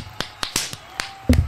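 A run of sharp, crisp slaps, about six in quick irregular succession, each a short bright smack, with the last one heavier and followed by a brief low murmur.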